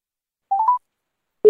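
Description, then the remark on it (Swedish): A short rising sequence of electronic phone tones as a phone call is placed, then a steady telephone ringing tone begins and cuts off abruptly at the end. Clear, with no voices. “Det ringer.”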